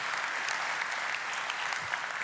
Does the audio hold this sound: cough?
no